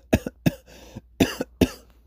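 A short fit of harsh, dry coughing caused by dust, about five sharp bursts in quick succession with brief gaps, fairly loud with no talking.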